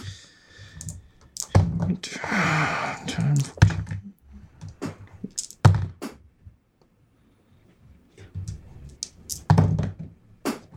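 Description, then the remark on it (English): Dice rolled four times clatter and tumble across a hard tabletop, fairly loud, each burst of sharp clicks and knocks followed by a short quiet pause. “Give me a minute while I roll these dice four times.”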